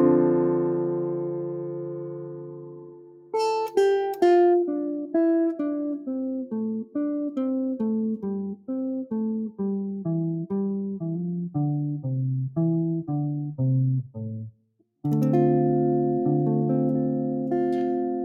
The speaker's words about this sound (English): So what I'm going to do is slowly play a few tones from each back and forth, four notes of each, and then I'm going to play a chord here. So D minor seven.